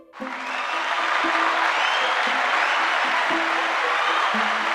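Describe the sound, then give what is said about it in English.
A round of applause from a crowd starts abruptly and holds steady and full for several seconds, dense loud clapping, with faint low musical notes underneath. “Let's give Sam a round of applause.”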